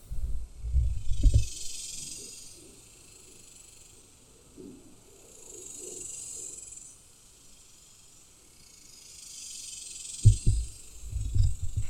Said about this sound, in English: Sitting out here again with the cicadas. Not sure if you were able to hear them in yesterday. Not sure if you'll be able to hear them again today, but they sound awfully loud to me.